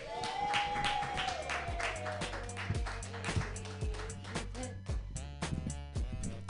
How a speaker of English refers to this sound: Keep clapping for your host